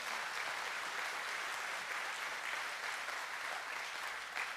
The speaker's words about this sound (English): So let's give a clap offering to the Lord this morning. Let's give him an offering.